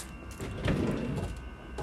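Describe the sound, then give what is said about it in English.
A drawer slides open with a short, rumbling scrape that swells and fades over about a second, moderately quiet, with no voices. “Alright, let's check these drawers.”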